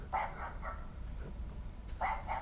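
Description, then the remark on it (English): Small dog barks played by an Alexa smart speaker on command: a quick cluster of three yaps, a pause, then two more sharp yips, moderately loud with no talking. “Yep, that's my Alexa.”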